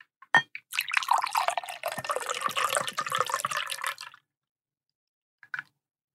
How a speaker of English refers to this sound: But I have a Pisco Sour that I just mixed up. So I'm going to go ahead and pour it into my new cocktail glass. New-ish. I bought it for this segment specifically.